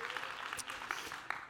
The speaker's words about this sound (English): Can you just clap your hands and rejoice in the Lord this morning?